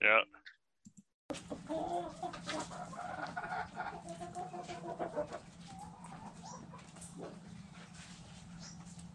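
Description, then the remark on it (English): Chickens cluck steadily amid a busy, noisy farmyard background, the calls overlapping and fairly low in level, after a brief louder sound at the very start. “It was pretty low, but I heard chickens.”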